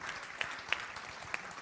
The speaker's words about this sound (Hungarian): tapsoljatok meg